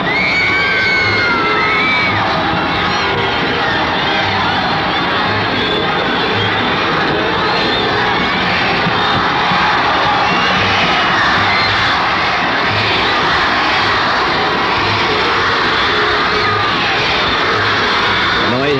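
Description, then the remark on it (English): A huge stadium crowd on the west side roars continuously while waiting for the singer to come out of the dressing room, shouting and cheering in a dense, loud wall of voices with whistles and shrieks rising above it, steady for the whole stretch. “crowd on the west side, where I'm now standing.”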